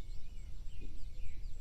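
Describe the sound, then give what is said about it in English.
Birds waking up and singing in the early morning around a farmstead, several faint, high chirping calls overlapping in a continuous chorus above a steady low rumble, with no one talking. “And if you're listening, you can hear all the birds waking up and singing their songs, you know, early in the morning here.”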